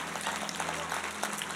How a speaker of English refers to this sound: Come on, give God another big clap and thank Him.